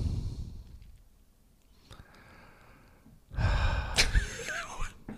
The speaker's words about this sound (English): I like the breathing into the microphone.